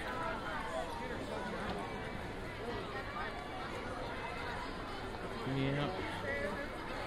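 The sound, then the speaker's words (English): A dense outdoor crowd on a theme park's Main Street murmurs steadily, many overlapping voices blending into a constant hubbub, with a few louder voices rising briefly above the babble near the end. “Okay, so we're standing in the middle of Main Street looking for a cast member.”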